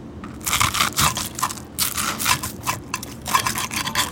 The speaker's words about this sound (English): And that crepe's made with rice flour, so it's extra crispy. So when you cut into it, you hear the crunch. But that's really important for banh seo.